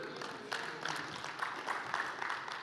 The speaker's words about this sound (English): Thank you all for that golf clap, 8 of you.